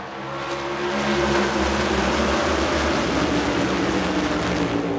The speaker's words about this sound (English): Nearly 60,000 people filled the stands, eager for the race that was about to unfold in front of them. Their shouts were easily overwhelmed by the 36 cars on the track, each speeding past the green start flag at more than 130 miles an hour.